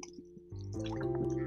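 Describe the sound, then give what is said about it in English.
A wet sipping and swallowing of water, with soft slurping and gulping sounds that grow louder after a quiet start. Nobody speaks. “hold on, let me get a sip of water.”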